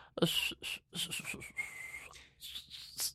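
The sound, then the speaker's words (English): Someone whistles a short, bright, festive tune, with clear, precise notes that glide and step over about three seconds, standing out alone without talk. “And he started to whistle a very precise, clear, festive tune.”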